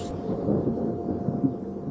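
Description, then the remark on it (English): A deep, continuous rumble of thunder rolls through the whole two seconds as it starts to rain, low and fairly steady with slight swells, and no voices are heard. “I knew this was gonna happen, and now it's raining.”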